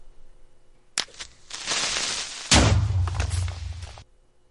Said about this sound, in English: That was a creeper explosion from Minecraft.